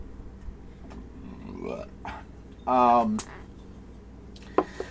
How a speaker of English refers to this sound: Burping.